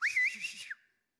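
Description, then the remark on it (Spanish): A single loud human whistle, a father's call summoning his son home from playing football, a short call that swoops up, holds and then drops away, lasting under a second and followed by silence. “Yo estaba jugando fútbol y ya oí la silbada de mi papá.”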